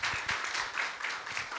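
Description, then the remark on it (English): A church audience breaks into steady applause, a round of applause for God: many hands clapping together in a dense, continuous patter with a few louder individual claps standing out. “Can somebody give God a round of applause for what He's doing?”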